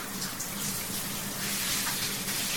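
A shower runs steadily, a continuous hiss of water spraying and splashing, with no pauses and no voices.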